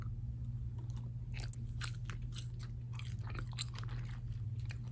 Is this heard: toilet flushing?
no